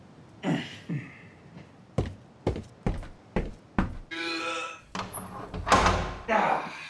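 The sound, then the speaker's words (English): A door is pushed shut, with a run of sharp wooden thumps and knocks in quick succession, followed by rustling, shuffling handling noise. “I didn't even shut the door.”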